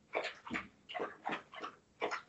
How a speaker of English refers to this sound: I can hear the dog too.